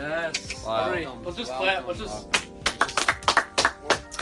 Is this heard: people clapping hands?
yes